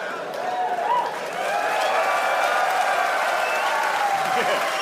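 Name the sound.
comedy club audience applause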